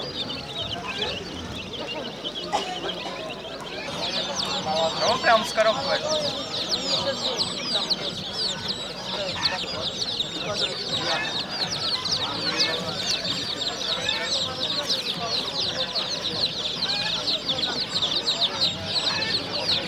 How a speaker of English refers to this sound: This is the sound, which is the bird market in Tashkent, and it's the markets are where everybody goes at the weekends or and other times to just buy whatever you want.